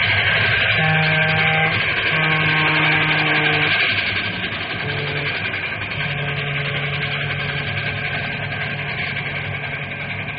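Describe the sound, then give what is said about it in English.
The Fireball Express train roars past a railroad crossing with wooden cross arms, a loud, steady rumble, while long blaring horn tones sound in several separate blasts. The roar eases slightly partway through but keeps going. “Hey, look at that monster come roaring.”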